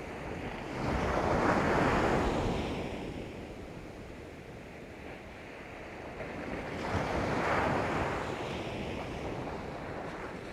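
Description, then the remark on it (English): Ocean waves wash onto the shore in two slow, swelling surges, each rising to a broad hiss and receding, with steady wind noise underneath and no voices. “And the movement of the water.”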